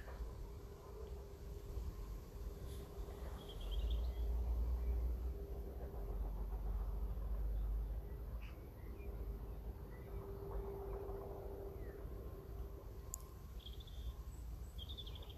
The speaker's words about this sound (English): You can hear the birds.